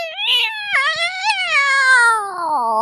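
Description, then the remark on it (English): A person imitates one of the vicious cats said to live at Cat Swamp, letting out one long, loud, wavering meow-like yowl that slides downward in pitch over about three seconds, with no other talking. “that was a pretty good rendition of a crazy cat.”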